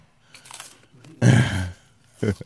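Soft, wet chewing and crunching of a honey bun, eaten along with its wrapper, in a few uneven bursts, with a louder mouthful in the middle and brief pauses between bites.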